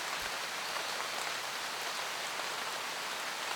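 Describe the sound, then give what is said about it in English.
Steady rain falls in a continuous soft hiss, with fine droplet patter spread evenly throughout and no voices, a gentle, moderately quiet wash of sound. “Listen to the sound of the rain.”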